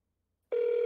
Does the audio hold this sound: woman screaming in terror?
no